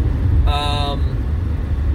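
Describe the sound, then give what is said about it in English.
A slow-moving car rolls along the road with a steady low rumble throughout, and a brief horn-like honk sounds for about half a second partway through. “What was I saying before I was rudely interrupted by that slow poke of a car, not paying attention to the damn road?”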